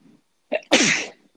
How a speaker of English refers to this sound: I know I need a sneeze button. The cedar is really bad here in Latvia. Again, bless you. Wow, that was a wet one.